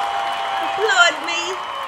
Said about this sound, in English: Oh, wow. And a real live audience. Yes. This audience is boisterous and ready to applaud at a moment's notice. Please applaud. Applaud, audience.